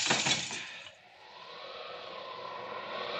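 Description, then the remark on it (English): Window glass breaks with a sharp, bright crash, followed by a brief scatter of tinkling shards that quickly settle into a faint, lingering hiss. “No time for opening windows.”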